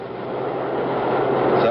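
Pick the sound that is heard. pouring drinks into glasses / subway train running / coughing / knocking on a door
subway train running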